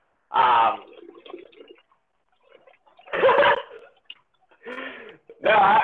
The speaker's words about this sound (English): I'm kind of burping now, but consider that some background music for you.